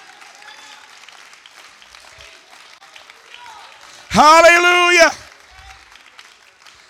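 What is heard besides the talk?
church audience clapping hands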